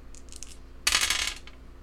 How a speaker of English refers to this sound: How many dice are you rolling? It's a long one.